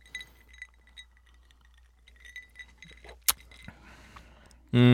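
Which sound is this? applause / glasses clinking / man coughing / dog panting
glasses clinking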